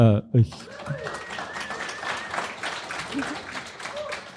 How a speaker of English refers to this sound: We so have much an audience for that. Who gives a round of applause for philosophers.